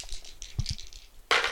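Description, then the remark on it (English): Two twenty-sided dice (2d20) clatter and tumble across a hard tabletop during a tabletop role-playing game, rolled for a spell against snakes: a pair of dull knocks, a stretch of light rattling, then a sudden louder burst of clicking at the end, landing on 19 and 9. No voices. “Roll 2d20 rolls. Let's do 2d20 rolls.”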